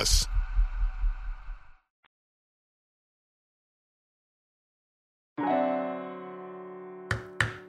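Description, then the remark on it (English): Three sharp, loud wooden knocks close together at the very end, a paddle rapped like a gavel, coming right after a sustained ringing tone and a stretch of silence. “We are back banging the Noki paddle, subbing in as a gavel here virtually.”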